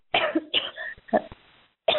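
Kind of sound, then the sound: human body sound, coughing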